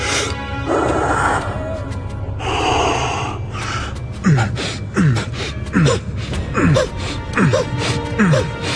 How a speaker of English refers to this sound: He breathes and compresses Alfred's old man's chest, and breathes and does it again.